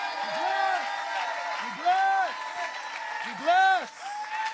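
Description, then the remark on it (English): A church audience in Orange County claps hands in a steady wash of applause for about 5 to 10 seconds in praise of God, with a voice singing or calling out over it in short rising-and-falling phrases. “Come on, give him a hand clap. 5 seconds, 10 seconds.”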